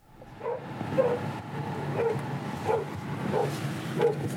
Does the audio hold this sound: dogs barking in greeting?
yes